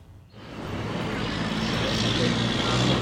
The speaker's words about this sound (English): Here, there's traffic and houses and concrete.